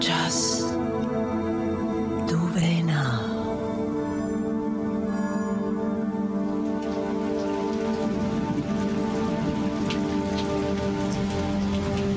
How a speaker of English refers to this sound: And then when she, you know, said whatever she said, and then all of a sudden you hear the sound of rain.